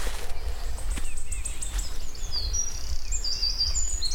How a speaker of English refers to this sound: Quite yellowy green, quite a big warbler. Oh. That'll be about the best ever recording of wood warblers I'll ever get.